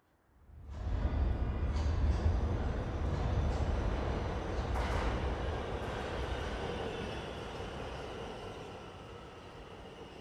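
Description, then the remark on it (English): A train bound for the mountains rolls along the rails with a heavy, steady rumble that swells in quickly and holds, scattered clacks and faint wheel squeals riding over the deep low roar. “He put on his best clothes, took a small bag, went to the station and got into the train.”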